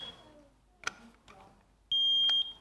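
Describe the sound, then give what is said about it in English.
A smoke alarm being demonstrated gives a single loud, piercing electronic beep lasting about half a second, following a few quiet clicks and handling noises. “This is a smoke alarm.”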